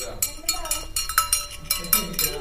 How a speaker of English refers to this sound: You want to ring the bell,